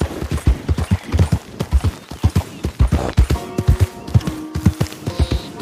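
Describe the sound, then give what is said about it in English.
Rapid, rhythmic hoofbeats of a horse galloping fast along a railroad track in a video game pound steadily, with a faint tonal hum of game music or ambience rising underneath in the second half. “Oh yeah, this horse can go really fast.”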